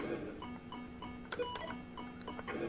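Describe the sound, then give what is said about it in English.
A pickaxe disintegrating in the retro video game Pickaxe Pete: a run of clicky, crackling digital bursts over a steady electronic hum, with a few sharper noisy hits toward the middle and end. “There's the sound of the pickaxe disintegrating.”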